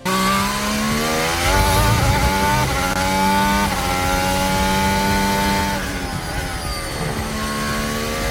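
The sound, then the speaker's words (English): A Formula 1 car engine screams at high revs on a track, pitch climbing and dropping through repeated gear changes, loud throughout with no talking. “Keep the revs up.”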